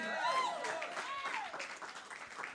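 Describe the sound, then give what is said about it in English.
A church audience claps in a steady, mid-loud patter of many hands while a raised voice carries over the top, the applause thinning slightly toward the end. “I love the claps.”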